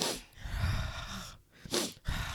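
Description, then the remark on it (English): A voice imitates sniffling: a few quick, breathy nasal inhales and snorts in an uneven rhythm, with one longer wheezy breath in the middle and no words. “I just thought he was sniffling because all I heard was.”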